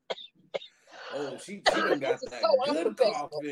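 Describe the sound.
A couple of short, sharp coughs sound at the very start, followed by a person talking continuously with more rough, throaty bursts mixed into the speech.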